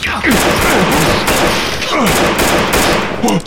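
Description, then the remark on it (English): A loud burst of gunfire: several sharp, cracking shots spaced unevenly over a few seconds, over a dense, roaring wash of noise with falling, whining tones between the shots. A man is hit twice in the back as he pushes through double doors on a balcony. “You hit him! Twice in the back as he pushed through the doors inward!”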